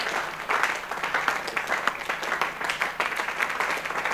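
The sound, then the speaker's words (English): A large audience applauds steadily in an auditorium, dense overlapping claps forming a continuous, moderately loud wash of sound with no voices standing out. “All those who are clapping, may heaven remember you.”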